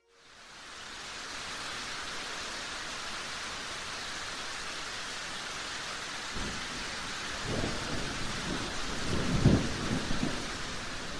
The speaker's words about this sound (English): That night, we had a pretty heavy storm roll in. It wasn't quite freezing temperatures, but it was pretty close to it. Heavy rain and wind knocked out our power,